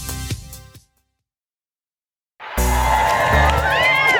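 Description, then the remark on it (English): A brief burst of sound gives way to a silent gap, then a loud outdoor crowd, gathered at 8:30 on a Tuesday morning as it grows warm, erupts in sustained cheering and shouting, with whistles rising over the roar. “It's Tuesday morning. Great crowd.”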